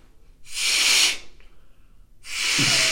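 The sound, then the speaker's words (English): Two long, breathy bursts of air being blown into a condom like a balloon, fairly loud, separated by a short quiet pause, with no talking. “how big of a balloon would it be if you blew up a condom?”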